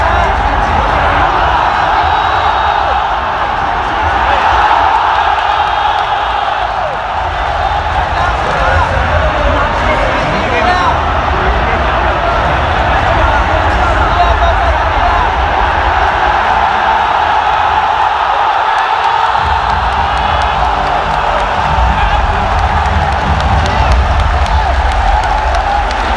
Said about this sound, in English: So that's the crowd after game one of LGD versus OG. They're going to yell again in a second when LGD comes out of the booth.